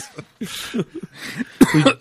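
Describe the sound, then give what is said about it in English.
A person coughs several times in a rough, irregular burst, fairly loud, ending with a harsher, throat-clearing hack. “… made you cough?”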